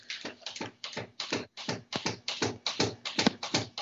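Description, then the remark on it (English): Cats scratching in a litter box: a steady run of about a dozen quick, gritty scraping strokes in an even rhythm, moderately loud, with no voices. “Cats in the litter box.”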